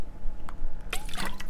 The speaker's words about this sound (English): Excuse me, folks, just had to grab some water.